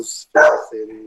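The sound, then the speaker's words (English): A dog lets out a single loud, sharp bark, followed by a quieter, steady low sound trailing off for a moment afterward. “There's the dog.”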